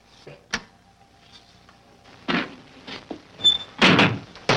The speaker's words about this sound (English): It's just the sound of a jail door closing, Mr. McGurk.